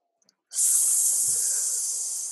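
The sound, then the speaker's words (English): A person hisses like a snake, a sharp, steady breathy hiss that starts abruptly after a couple of faint clicks and holds at even loudness for about two seconds. “Now what I want you to hiss at me like you're a snake.”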